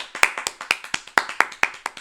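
A small group applauds, with sharp, closely spaced hand claps overlapping in a steady, brisk patter for a couple of seconds, moderately loud.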